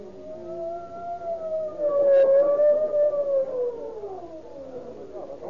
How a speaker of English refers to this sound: Oh, here comes the ambulance.